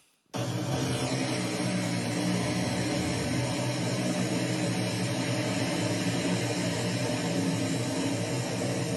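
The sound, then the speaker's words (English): A parcel-delivery drone flies overhead during a delivery trial on the west coast of Ireland. Its steady, loud rotor whine and hiss start abruptly and hold constant, a dense buzzing drone with layered low hum, with no voices. “We are experimenting with drones delivering parcels.”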